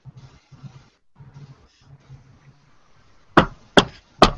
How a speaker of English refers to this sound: I go to Halya's house and I knock on the door. Halya's house is dark.